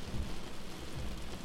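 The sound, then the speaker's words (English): Steady, heavy rain pours down with a low rumble of thunder rolling beneath it, a dense, continuous storm wash with no voices. “The nuclear storm, now named NS Melina, is utterly destroying the coastline.”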